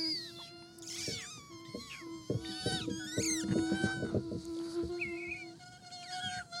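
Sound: cat meowing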